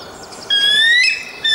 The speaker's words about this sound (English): That is an actual bald eagle. Not very fear-inducing. That doesn't really strike fear into ISIS.